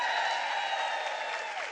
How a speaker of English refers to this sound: Now that sounds more like a sold-out crowd of nearly 1,500 attending today. Woohoo!